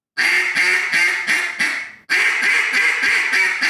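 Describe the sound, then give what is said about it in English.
A raspy hen duck call blown in a boss hen cadence: a run of five harsh quacks, a brief break, then another string of rapid rasping quacks, loud and with no talking. “Okay, do boss hen cadence. Boss hen cadence? Yeah. Now raspy.”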